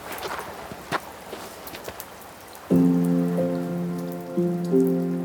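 Heavy rain patters steadily on a hard surface on top of a tower reached by old stone steps, with scattered sharper drops. About halfway through, loud sustained musical tones come in on top and carry on over the rain.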